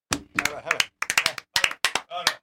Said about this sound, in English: Oh, clap.